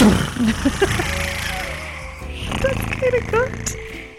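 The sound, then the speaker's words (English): A voice imitates a door-stopper spring's boing, making a twangy, wobbling tone whose pitch quickly wavers up and down in a rapid vibrato before fading out. “Okay, so because you got that wrong, you need to recreate the sound of the door spring that stops the door.”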